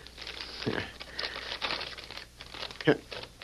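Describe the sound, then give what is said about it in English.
A paper envelope said to hold Slim Leonard's confession is torn open and crinkled, with a steady run of rustling and crackling and a sharper rip near the end. “Let's get that envelope.”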